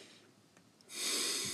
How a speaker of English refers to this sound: And that last time when you just got kicked out again, there was nobody in the room but myself, only my microphone, and I was hearing heavy breathing again. So I know somebody's physically watching at this point.